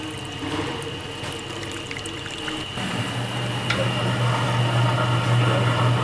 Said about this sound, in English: Here we have a device for the water. It automatically measures the water and sets the temperature. While kneading the dough, it gradually adds water.